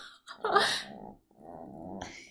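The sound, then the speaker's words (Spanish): A female chihuahua named Frida snoring hard while asleep: two long, raspy breaths in a row, the first with a wheezy, whistling edge, the second a steadier rumbling rattle, with no talking over it. “Si escuchan eso, es a mi chihuahueña Frida roncando a todo dar.”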